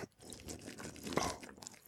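Crunching cereal being chewed during a cereal challenge, a dense stretch of crisp, crackly bites with one sharper, louder crunch around the middle, fairly quiet overall and with no talking.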